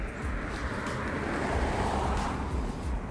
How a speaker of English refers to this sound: Oh, hold on, car coming.